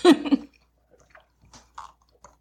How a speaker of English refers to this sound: I have on lipstick. So I need a straw. Okay. All right. Hold on. I have to take a sip.